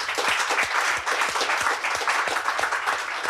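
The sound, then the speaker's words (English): An audience breaks into steady applause for a speaker, many hands clapping in a dense, continuous wash with no voices rising above it, holding an even loudness throughout. “A round of applause”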